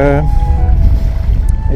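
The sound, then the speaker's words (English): Wind buffets the recorder with a steady, loud low rumble that runs the whole way through, while a voice briefly sounds at the start and again near the end; a windy day while fly fishing, standing in the water. “It's windy, as I said, as usual, which is good for fishing but bad for recording.”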